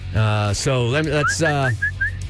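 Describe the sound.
A short, bouncy pop melody is whistled in quick, clipped notes, partly overlapping louder voiced, tonal sounds at the start before the whistled phrase continues on its own.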